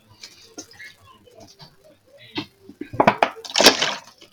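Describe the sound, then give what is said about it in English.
Someone chews crunchy food, with soft mouth noises at first, then a burst of loud, crackly crunches toward the end. “Yeah, if you don't like chewing, this is probably not the episode for you.”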